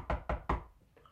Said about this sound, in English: Knock at the front door.